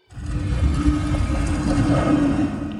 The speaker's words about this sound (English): The right door of the large double-doored gate opens after a moment of waiting.